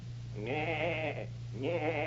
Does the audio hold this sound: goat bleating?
yes